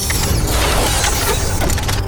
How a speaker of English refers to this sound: The metal parts turned and twisted until the hand was a cannon.